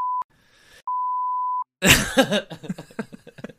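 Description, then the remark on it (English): A loud, steady censor bleep sounds twice, first briefly, then held for most of a second, covering speech. Rough, throaty vocal noises like coughing and groaning follow right after. “It's all just beeps to Baby Nation.”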